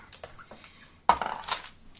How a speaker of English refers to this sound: Why does he have so many dice? Stop it. It's just the man rolling with 5.